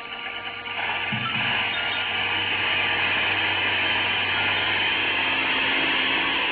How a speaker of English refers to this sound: Two precarious little seats are propped up high in the middle of it. And at the back is a motor with an airplane propeller.